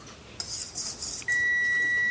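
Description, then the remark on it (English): A kitchen timer sounds a loud, steady electronic tone that starts abruptly and holds without a break, following a few seconds of soft hissy scraping. No one speaks. The timer signals that a pie crust has been cooling for 35 minutes. “That beeping you hear is telling me that my pie crust has now been cooling for 35 minutes, which is perfect because now I have this filling ready to go.”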